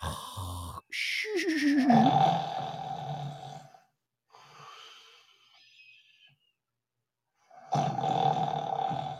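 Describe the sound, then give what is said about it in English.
Two loud, rumbling snores with a harsh, roaring rasp, separated by a quieter wheezy breath. Prominent, with no talking. “You snore like a fucking bear, dude. You sound like something's hibernating inside your body.”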